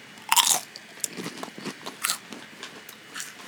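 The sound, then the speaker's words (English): A loud, sharp crunch as a classic Lay's-style potato chip is bitten, followed by a steady run of softer crackly chewing crunches with no talking. “This is just a classic sort of Lay's potato chip style chip.”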